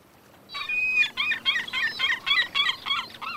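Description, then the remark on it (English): A seagull calls out over water in a quick series of about eight harsh, squawking cries, loud, following a brief whistle-like opening note, with no voices present. “Now that's the kind of shadow I'd like to be. A seagull shadow.”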